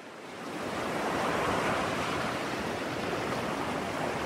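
Surf washes steadily onto Jamestown Beach in Ghana, a broad, continuous roar of breaking waves that swells in over the first half second and then holds, with no voices present.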